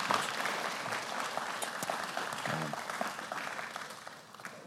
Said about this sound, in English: Can you give him a round of applause as he say welcome to our church?